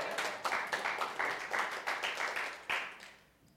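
A group claps together in a fairly steady rhythm, bright sharp claps blending into a brisk patter that fades out after a few seconds. No voices are heard.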